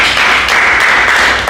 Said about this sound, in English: Praise the Lord Jesus. Hallelujah. Someone give the Lord a clap for them.